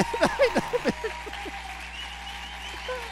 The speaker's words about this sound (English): And they're clapping.